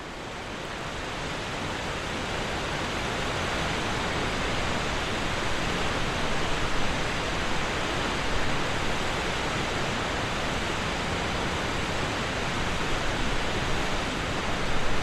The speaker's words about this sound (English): We begin downstream at the river and move closer to the 60-meter-tall waterfall, Skógafoss.